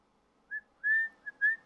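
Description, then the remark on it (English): A man whistles a short run of clear notes: a brief chirp, then a longer held tone, a quick blip and another sustained note, moderately loud with no talking. “Can you give us a whistle?”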